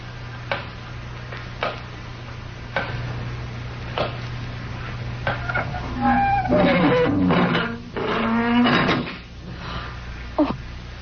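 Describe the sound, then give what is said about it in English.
A heavy door creaks slowly on its hinges and shuts, preceded by scattered sharp knocks and clicks over a low steady hum, with no talking. “Someone's closed the door. We're locked in.”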